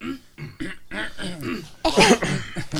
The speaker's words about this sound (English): And now I want to do something as I clear my throat.